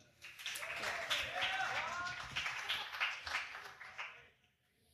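An audience at an open mic night in Salinas claps steadily for the next performer, a dense patter of hands joined by a few rising whoops and shouts, then the applause thins and dies away near the end.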